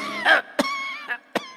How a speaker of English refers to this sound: I mean, why are you suddenly coughing?